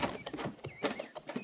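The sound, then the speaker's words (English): A horse's hooves clop in an uneven, steady rhythm, about seven strikes over a second and a half, with a faint whinny-like tone drifting above them. “Mind his horse, Sergeant.”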